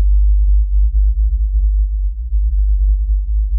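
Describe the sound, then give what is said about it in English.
An unaltered, low-frequency whale song, not pitched up, from a whale calling at the wrong frequency: a deep, steady hum with faint clusters of short pulsed tones riding above it in uneven bursts. No voices. “This whale, calling out at the wrong frequency, that is a huge deal for a whale.”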